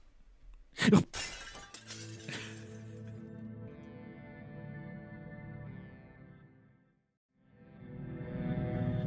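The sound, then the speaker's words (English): A pane of glass shatters with one loud, sharp crash, followed by several seconds of ringing, tinkling debris that fades away before a new rushing noise rises at the end. “Do you want to go jump through a pane of glass real quick as we do a little ad break?”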